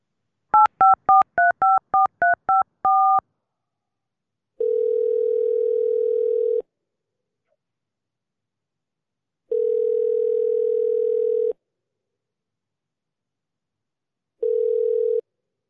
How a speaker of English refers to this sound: you're going to hear a ringing noise, and then hopefully Mrs. Patel will be available